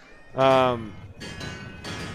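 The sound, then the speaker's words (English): Pots are banged together in quick succession to show displeasure at the king's death, three or so sharp metallic clangs with a ringing tail, following a short voiced shout at the start. “Yes, what is the point of the pot banging?”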